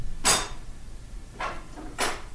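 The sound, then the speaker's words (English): Three sharp metallic clatters spaced irregularly, cutlery being rummaged through in a cutlery drawer while looking for a bottle opener, moderately loud with quiet gaps between. “There's usually a bottle opener. Cutlery drawer.”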